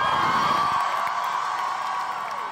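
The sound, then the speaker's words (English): A large crowd at a rally on the Treasury building steps cheers and whoops steadily, a dense roar of many voices that stays loud throughout before easing slightly toward the end, with scattered shouts rising above the din. “And we'd just like to acknowledge how massive this crowd is, everyone!”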